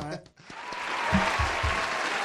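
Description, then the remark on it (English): An audience breaks into steady applause after a brief pause, the dense clapping holding loud and even for about two seconds with a few low murmurs underneath. “Let's give him a round of applause for not liking slavery.”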